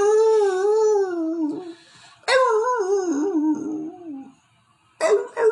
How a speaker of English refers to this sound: Somebody get that dog.